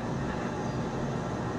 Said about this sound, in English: Can you turn off the engine, please?